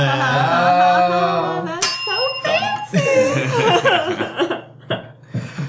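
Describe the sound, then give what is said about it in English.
A single bright bell ring cuts in sharply and lingers with a clear, shimmering tone, while people chuckle and talk around it. “The bell makes its triumphant return.”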